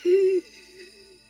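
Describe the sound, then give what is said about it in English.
A short wheezing gasp with a reedy, whistling pitch as breathing starts again, loud at first, then trailing off into a fainter, strained wheeze as the breath fades. “He does not wake up, but he is breathing again.”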